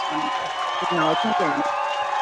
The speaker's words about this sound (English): Dang, they were really excited about that. That cheer went on forever.